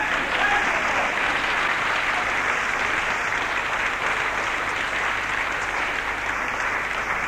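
Sustained, steady applause from a sizable audience, many hands clapping densely and evenly throughout at a strong, constant level, with no individual claps standing out.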